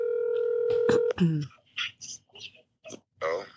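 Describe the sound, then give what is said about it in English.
A telephone's steady electronic dialing tones sound for about a second as a phone call is placed, then break off into a series of short snorting and grunting bursts. “Let me just see if Joe Budden will answer the phone.”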